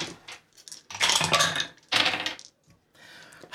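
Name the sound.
dice rolling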